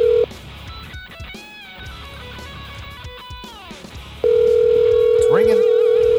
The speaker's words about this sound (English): There it is. It's ringing. So we're good. We're locking it in.